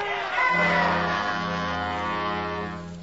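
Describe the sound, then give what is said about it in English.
A loud crowd roars and shouts in alarm together in a sustained, rising clamor of many voices, holding strong for about two seconds before tapering off slightly. “What's bothering the crowd, Lieutenant?”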